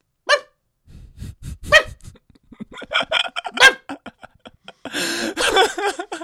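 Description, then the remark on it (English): A dog barks in several sharp, irregular bursts, fairly loud, ending in a rougher, more continuous volley of barking with short gaps between. “and this one young, older lad barked the entire time.”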